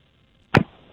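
A single loud, sharp click of a hairdryer's switch being flipped to the other position while the hairdryer is plugged in and running, snapping out abruptly and fading within a split second over a faint, steady background hiss. No one speaks.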